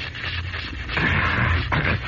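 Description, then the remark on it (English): Two hissing bursts of a throat spray: a longer puff followed by a shorter one, soft and breathy over a faint, steady background hum, with no talking. “Now, wait until I spray my throat.”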